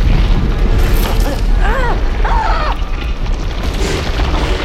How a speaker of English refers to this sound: Finally, the quaking stops. Okay. It's nothing too out of the ordinary. This is earthquake country. I've seen upheavals like this before, just not from within the epicenter of a mountain.